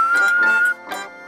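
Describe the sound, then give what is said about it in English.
A steady, sustained whistle holds one high note for under a second, with voices murmuring and laughing around it, then fades as the chatter continues briefly. “Until next week, when we will be reading the second half of Moominsummer Madness, make sure never to whistle on stage.”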